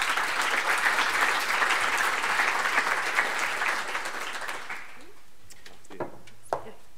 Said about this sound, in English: please give her a warm round of applause.